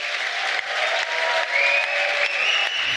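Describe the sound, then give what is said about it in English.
Steady, dense applause from a live audience for the guests at the end of a live show, a loud wash of many hands clapping that holds for the full three seconds without pause, with a faint whistle-like tone rising briefly in the middle. “We give a big round of applause to our guests,”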